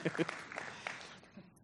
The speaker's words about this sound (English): Give it up for Tim. You got a few claps.